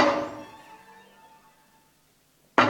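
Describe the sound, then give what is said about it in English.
A percussionist strikes a door built by a luthier from wooden panels of different tones, over a hollow platform: a loud, resonant strike on a panel rings out with a slowly fading hum, followed by a second sharp hit near the end. No voices are heard. “It's for a percussionist banging on the door to heaven.”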